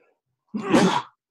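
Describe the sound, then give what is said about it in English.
A single sneeze bursts out abruptly, a harsh, breathy, full-bodied blast lasting about half a second before cutting off into silence. “Bless you.”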